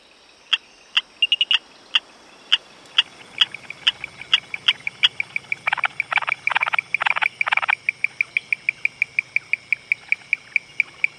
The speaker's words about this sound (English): And so the first thing that strikes you, I think, about a Sri Lankan cloud forest is the call of dozens of species of frogs.